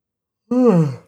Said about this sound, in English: Well, you're yawning, so I'm gonna guess that we're out of things to discuss here.